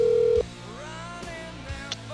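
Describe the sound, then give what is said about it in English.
A short, steady electronic telephone ringback tone on an outgoing call dialed rotary style sounds loudly for under half a second, then cuts off, leaving a soft line hiss with faint clicks and tonal traces behind it. “There we go. It's ringing.”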